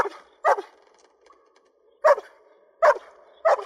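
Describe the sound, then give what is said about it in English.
A dog in a movie lets out five sharp, high-pitched fear barks at uneven intervals, loud, with a desperate, fearful edge and brief quiet gaps between them; no one speaks. “And it impressed me, and I recorded some of it, because this is fear barking, and it really got me.”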